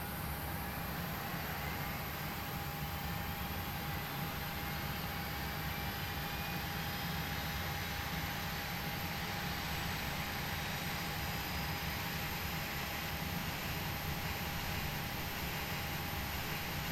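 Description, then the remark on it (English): An aircraft's number 1 jet engine starting up after the starter is switched to ground: a steady, dense roar with a sustained high-pitched whine running through it, holding at an even loudness for the whole stretch, with no voices. “We're gonna switch the starter to auto. Or to ground, sorry. To on. GRD radio button checked. And we're gonna listen.”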